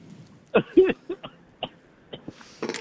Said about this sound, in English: Damn, what's wrong, buddy? Why are you coughing? Why are you coughing?